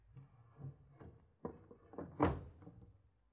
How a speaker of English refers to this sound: Yes, child. Go bolt the door.